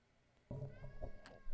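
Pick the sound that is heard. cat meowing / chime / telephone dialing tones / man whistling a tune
cat meowing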